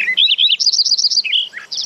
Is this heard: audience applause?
no